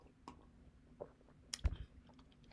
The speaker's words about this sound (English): That's right, sip of coffee tea, guys.